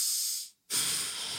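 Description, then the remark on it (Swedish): An airy breath out, a brief silent pause, then a long hissing breath in, loud with no talking. “Andas in och ut du också.”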